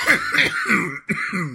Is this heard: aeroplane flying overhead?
no